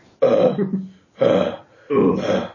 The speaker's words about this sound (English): It's mouth breathing. You fucking love it.